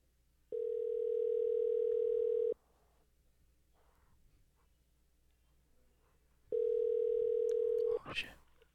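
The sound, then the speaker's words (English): An outgoing call's ringback tone: two long, steady buzzing rings of about two seconds each, separated by a quiet pause, followed by a brief click as the line picks up. “He doesn't know that we're calling.”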